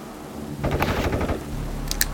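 A quick, muffled volley of gunshots is fired from inside Mr. Washington's home, followed by a brief lull and a couple of sharper cracks near the end, with no voices.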